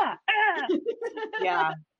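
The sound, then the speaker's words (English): Children yell at each other in the background in a few loud, high-pitched bursts, their raised voices strained and overlapping briefly before cutting off. “Did you hear as they're yelling at each other in the background?”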